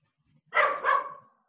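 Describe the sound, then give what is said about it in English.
A female dog lets out a quick double bark, fairly loud, the second woof trailing off a little longer. No one talks over it. “By the way, the dog's okay to make a Zoom appearance if you need her to.”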